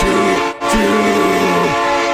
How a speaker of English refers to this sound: You got to feel pretty damn good about a Packers team that many people are reticent to board the Scalzo and Touch Super Bowl 57 train to Arizona. Chugga, chugga.